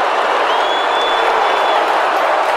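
A large crowd in an arena boos and jeers loudly in a dense, continuous roar, with a sharp high whistle cutting through for about a second partway in.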